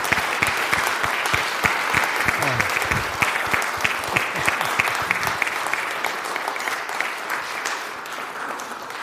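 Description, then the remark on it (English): An audience applauds steadily for about nine seconds, a dense, crackling wash of many hands clapping at once that holds loud throughout, easing only slightly toward the end. “So if we could all please give him a round of applause.”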